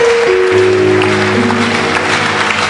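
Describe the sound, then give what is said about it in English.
A crowd claps steadily in a dense, continuous wash of applause, with sustained organ-like chords ringing underneath throughout. “Keep clapping. Every last person.”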